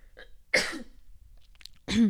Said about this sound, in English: And if you listen to Tuesday's episode, I'm going to have to cough.